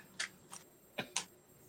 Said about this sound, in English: Ooh, girl. The cards are being difficult to shuffle, stubborn.